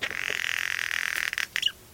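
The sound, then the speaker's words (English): An island scrub jay, a species living on Santa Cruz Island, gives a harsh, raspy call: a rapid rattling buzz held for over a second, then a few short, scratchy squawks before it stops. “There, an estimated 1,700 island scrub jays live in monogamous pairs, nesting within island scrub oak trees.”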